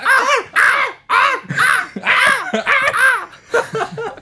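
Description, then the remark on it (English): Seagulls squawk loudly, a rapid series of about eight harsh, wavering calls with only brief gaps between them and no talking. “There's more seagulls.”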